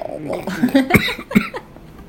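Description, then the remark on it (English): A few harsh coughs burst out in quick succession after a hit from a vaporizer, two sharp hacks standing out among rougher throaty sputters, as someone chokes on the inhaled hit. “But that, that vaporizer is supposed to, like, that guy said it It's not supposed to make you choke or cough.”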